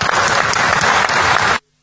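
A burst of applause from a group, dense overlapping claps at steady loudness for about a second and a half, then cutting off abruptly to silence.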